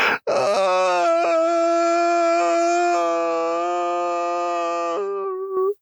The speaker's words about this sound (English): It was a long, shuddering wail of terror.